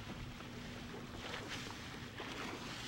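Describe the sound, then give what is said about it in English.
A chase boat's engine drones steadily as it heads toward another small boat on the open ocean, beneath heavy wind buffeting and rushing water, with no voices, a continuous churning roar. “My chase boat's in the area. Do you see a boat heading towards you?”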